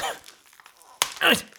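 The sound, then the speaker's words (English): Thick wrapping paper being torn open from a present: a brief papery crackle, a quiet pause, then a sudden loud, rasping rip that fades out after a few tenths of a second. “How much do you pay for this paper? It's so thick.”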